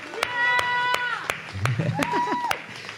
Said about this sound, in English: Yeah. You can clap. It's okay.